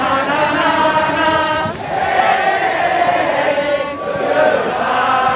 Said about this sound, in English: After 4 days of waiting and counting, thousands spill out, many literally dancing in the streets with the news that Joe Biden is now the president-elect. He won! You know what? Goodness won! That's who won! Goodness. Screaming, singing.